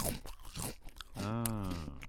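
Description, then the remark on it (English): Loud crunching as someone bites into a Cheeto cheese puff, a few crisp snaps in quick succession, followed by a drawn-out voiced hum of enjoyment. “Well, I'll eat it because it'll be sound good with the microphone.”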